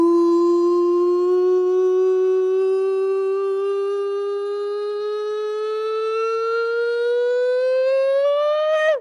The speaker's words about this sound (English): Yeah, it is the nonsense siren.